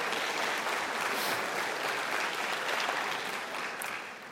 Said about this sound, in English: So on behalf of both the center and the class, I welcome you to this 50th reunion event, and a special welcome to all Class of 68 members. So you can give yourselves an applause.